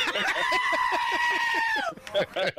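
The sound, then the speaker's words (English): A male caller imitates a goat on request with a long, quavering bleat, a wavering nasal tone held for nearly two seconds, followed by a brief burst of voices and laughter. “Can we get one more goat noise from you, …, on the way out?”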